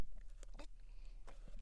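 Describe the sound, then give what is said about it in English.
A few quiet slurping sips of a venti Americano coffee from a cup, short wet mouth sounds spaced out over a low background hum, with no talking. “As I sip my venti Americano.”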